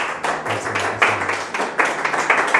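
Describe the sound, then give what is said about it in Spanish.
A crowd claps steadily and loudly for Jesus, the King of Kings, a dense wash of many hands with rhythmic surges, filling the whole clip with no one speaking. “Y si cree lo que Dios está haciendo, dele el aplauso más grande que pueda al Rey de Reyes.”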